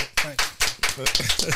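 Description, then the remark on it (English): Brisk, steady clapping, about eight or nine sharp claps in a quick even rhythm, with voices talking underneath. “You even get the applause in here.”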